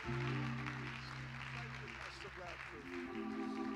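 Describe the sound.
An audience at a Sunday evening church service claps steadily together, a dense, continuous wash of hand claps over sustained organ-like music, with voices faintly mixed in throughout.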